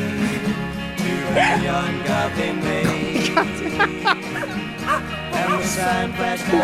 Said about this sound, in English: I'm trying to get the dog to do backup vocals, but it's really difficult. The dog is really coming back to life and yeah, that sounds pretty lively.